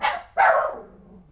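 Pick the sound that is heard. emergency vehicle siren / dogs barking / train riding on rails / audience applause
dogs barking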